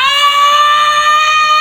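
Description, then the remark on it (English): A loud, sustained scream holds one strained pitch for almost two seconds, clipping the microphone with harsh distortion, with a faint low rhythmic thumping beneath it. “went Super Saiyan, clipping the mic.”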